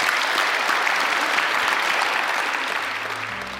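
An audience applauds a speaker after a debate session, steadily, in a dense wash of many hands clapping at once that holds loud and even before easing slightly at the end, with no voices over it.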